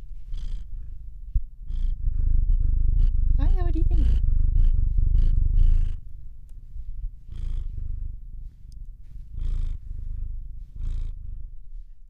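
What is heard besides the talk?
domestic cat purring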